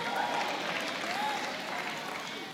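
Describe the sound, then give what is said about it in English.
An audience claps steadily, a dense, continuous wash of many hands, with faint cheering voices rising now and then beneath it throughout. “Those of you who are not clapping, what's wrong with you?”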